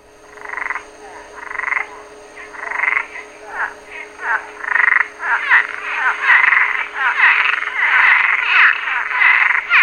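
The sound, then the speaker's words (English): Cuban tree frogs call in a dense, raspy chorus of repeated croaking bursts, starting in separate pulses and building into an almost continuous, loud overlapping din with no talking. “Cuban tree frogs are native to Cuba, the Bahamas, and the Cayman Islands, but are an invasive species in the U.S.”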